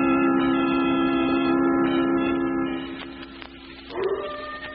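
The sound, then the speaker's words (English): A coyote off in the hills howls in one long, steady, droning note that fades a little, then breaks into a brief rising yip near the end. No voices are heard. “Get that coyote off in the hills.”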